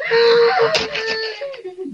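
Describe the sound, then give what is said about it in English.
A single drawn-out scream, a high, strained wailing cry that wavers in pitch for about two seconds before trailing off, with no talking over it. “I don't dig unless I hear a scream.”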